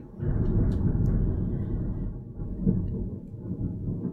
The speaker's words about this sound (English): I don't know if that's picking up, but it is a dreary, drizzly day here, and we're getting February storms and thunder and lightning for the past like 24 hours. It's great. I love it.